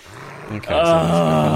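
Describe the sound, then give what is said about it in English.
A low rumbling gives way to a loud, sustained snarling growl from a monstrous wolf chained to a wall, menacing, holding steady for about a second. “There is a monstrous wolf chained to the wall.”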